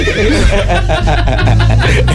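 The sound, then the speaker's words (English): A horse whinnies loudly, a shaky, wavering neigh that sustains for a couple of seconds without pause. “The horse felt sorry for him?”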